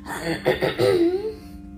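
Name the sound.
throat clearing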